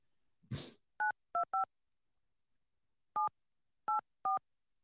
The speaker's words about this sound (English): Six, eight, three, one. Now you know the last four numbers of Sousa's phone.